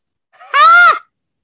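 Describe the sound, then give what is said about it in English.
A person lets out one short, loud, high-pitched scream right up close to the microphone, lasting about half a second before cutting off into silence. “Why did you make me scream in this mic like that”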